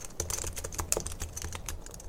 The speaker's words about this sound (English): Popular triggers include whispering, like I'm doing right now, tapping, positive affirmations, you're amazing, or even random sounds like typing on a computer.